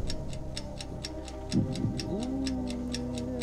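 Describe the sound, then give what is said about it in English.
A countdown clock ticks in a fast, steady rhythm, about four ticks per second, running throughout a five-second countdown. Halfway through, a low sustained tone or hum rises beneath the ticking. “So have the clock start.”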